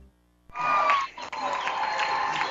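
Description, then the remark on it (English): A crowd of basketball fans breaks into warm, steady applause as the third official makes it out onto the court. It starts suddenly and holds at a loud, even level, a dense wash of clapping with a few brighter cheers mixed in. “Well, that warm applause you hear is our third official making it out on the court.”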